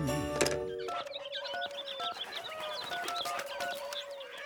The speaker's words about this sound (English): Hi, honey. Yes, I got the calling birds. Yeah, the man just dropped them off. Well, they're great.